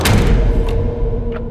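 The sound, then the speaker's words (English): The side door of a house shuts at around 2 in the morning with a heavy, muffled thud, followed by a low lingering rumble and a couple of faint softer knocks, heard through the floor from the room directly above. “My mom heard the sound of the side door, which happened to be directly below her room, shut.”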